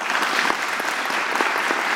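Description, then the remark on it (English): A clapping sound effect: dense, steady applause-like claps filling the whole two seconds at an even, fairly loud level, with crisp bright smacks overlapping into a continuous patter. “Play your clap sound.”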